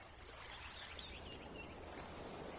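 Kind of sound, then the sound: nature, ocean waves and breeze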